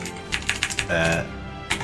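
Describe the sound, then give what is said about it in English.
Crisp clacks of a mechanical keyboard, four quick keystrokes in a rapid burst, then a brief voice, and one more sharp key click near the end. “I'm sorry if this is too loud of a keyboard, by the way. I have a mechanical keyboard.”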